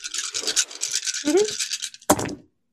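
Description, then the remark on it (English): A handful of dice are shaken and rolled for a grapple in a tabletop role-playing game, rattling and clattering steadily for about two seconds, then spilling out with a sharp burst of tumbling clicks that quickly settles into silence. “So I'll use the rest of the dice.”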